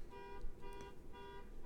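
A car horn outside, in a neighborhood near Summerlin, honks three times in a steady rhythm, each blast a short, flat, buzzy mid-pitched tone, fairly faint over a low background rumble with no one speaking.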